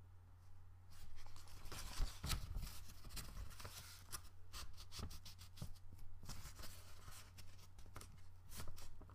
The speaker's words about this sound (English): Now I am going to fold a piece of coffee filter.